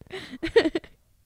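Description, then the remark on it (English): A brief yawn: a breathy, drawn-out vocal sound with a few wavering voiced swells that fade out quickly into quiet, with no clear words spoken. “Are you yawning or what you is that?”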